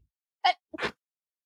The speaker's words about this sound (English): If I'm sneezing, people will think I have COVID.